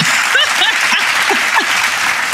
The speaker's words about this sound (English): Yo. Hey, there the claps go. There they go. They came. This is sporadic as hell.